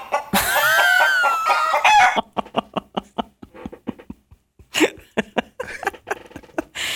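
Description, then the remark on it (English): A loud, drawn-out chicken squawk gives way to a rapid, evenly paced string of short clucks, then a few more bursts of clucking, with no talking. “You know, now I feel like you're calling me chicken, and I got a little bit of Marty McFly in me, and nobody calls me chicken.”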